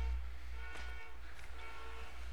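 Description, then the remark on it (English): A car alarm outside sounds in a steady, continuous electronic tone with layered harmonics, fairly faint over a low background rumble, with no one talking. “There was a car alarm outside.”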